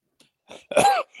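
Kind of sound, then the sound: human body sound, cough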